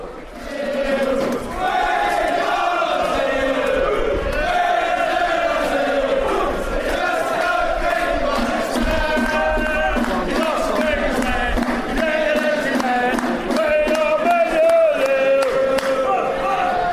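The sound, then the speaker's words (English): A big football crowd chants ahead of a big match, about four hours before kick-off, in a loud, unbroken roar of massed voices, the sung melody rising and falling steadily across the whole stretch with no pauses. “Atmosphere building ahead of what's going to be a big, huge game.”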